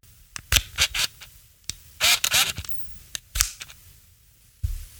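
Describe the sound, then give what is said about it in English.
An Olympus Mew 2 (Infinity Stylus Epic), a small clamshell compact film camera with an f2.8 lens, clicks its shutter repeatedly in crisp, sharp snaps, with a brief rattling, whirring burst midway, likely the film advancing, then a few more clicks. No one speaks. “And to segue to the next section of the show, here is the shutter sound of the Olympus Mew 2.”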